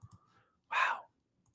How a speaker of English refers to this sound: Okay, sorry for all the clicking, guys. I'm checking GameSpot.